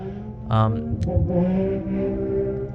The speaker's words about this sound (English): Sorry, I'm driving away my motorcycle.